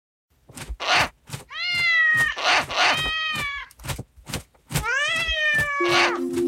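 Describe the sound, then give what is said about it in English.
A black cat yowls loudly as if in a fight, two long, wavering, drawn-out wails broken up by sharp spitting, hissy bursts and scuffling noises, with no talking. “It seems that the black cat and owl are fighting over the next story.”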